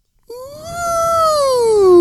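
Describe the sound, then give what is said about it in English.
A voice imitates a creaking haunted ghost door for a sound level check: one long, high, whining tone that slowly slides downward in pitch and swells louder over nearly two seconds, with no other sound. “can we get a little bit of ghost door from you just to get the levels?”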